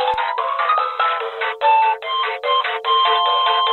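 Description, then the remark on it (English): A telephone ringing with an electronic, melodic ringtone. The tinny tones repeat in phrases separated by brief gaps, loud, with no one talking. “I think there was just an issue with our phones here.”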